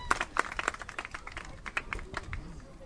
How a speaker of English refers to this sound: He's going to get a good round of applause.